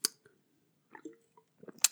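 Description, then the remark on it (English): A quiet slurp of Goose Island IPA beer: a few short wet sucking and smacking sounds spread over two seconds, ending in a sharper hiss, with no talking. “You hear that slurp?”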